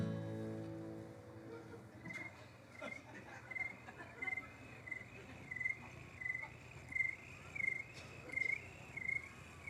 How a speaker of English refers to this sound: If you listen carefully, you can hear all the crickets join in.